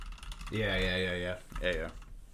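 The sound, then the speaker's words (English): Rapid, steady computer keyboard clicking, in a commercial for Guy and Dot His Grill, runs throughout at low volume, partly masked by a louder sustained humming voice that holds two long tones over the typing. “So like I imagine like hearing like the keyboard clicking.”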